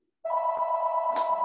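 A telephone starts ringing abruptly and holds one steady, buzzing electronic ring tone, loud and close, with no voices over it.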